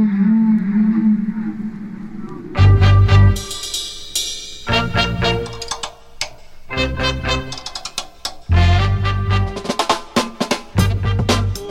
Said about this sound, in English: And we'll hear from the whales themselves. They were actually singing songs. Seriously, songs.